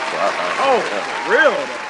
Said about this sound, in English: But round of applause for the U.S. women's soccer team, man.